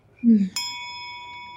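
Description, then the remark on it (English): A brief low voice sound, then a single sharp ding of a hotel front desk service bell, struck once and left ringing with a bright, steady tone that slowly fades. “Dude, ring the bell already. He rings the bell.”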